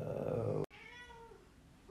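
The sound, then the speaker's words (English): A cat meows: a loud, strained cry, a brief pause, then a long, drawn-out meow whose pitch slowly falls. No one speaks. “Oh, hello, kitty.”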